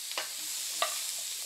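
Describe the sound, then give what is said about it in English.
Zucchini given a light sauté in a pan to make it a little more tender while still a bit crunchy: a steady, bright sizzling hiss runs throughout, broken by two short scraping clinks as the pieces are stirred. No one speaks. “We want to give them a light just saute.”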